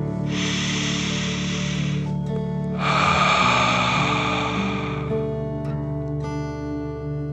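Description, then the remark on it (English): Two long, deep breaths, a drawn-out airy inhale followed by a stronger, louder hissing exhale, a deep "dragon breath" in and out during a guided breathing exercise, with a soft steady musical drone underneath and no talking. “Take a deep dragon breath in and out.”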